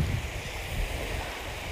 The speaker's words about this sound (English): Hello, waves. Aww, I want to be by the sea forever.